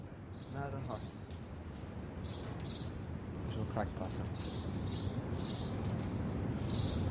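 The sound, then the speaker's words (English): Lots of small birds chirp and twitter around five or six nests, quick high calls overlapping throughout over a steady low rumble of background noise. “Here's the birds having a great time here, aren't they? Must be five or six nests in there.”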